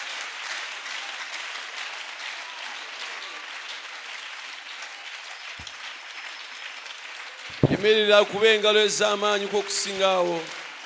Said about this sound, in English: Give a better hand clap than that.